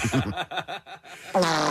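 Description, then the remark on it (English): A few seconds of snickering, pulsing laughter, then a loud buzzing raspberry as a person imitates a fart with their mouth, holding the sputtering noise steadily to the end. “Yeah, does that sound like diphtheria?”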